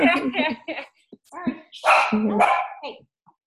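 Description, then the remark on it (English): A dog barks and yips a few times, mixed in with a person talking over it in short bursts. “there is my doggy.”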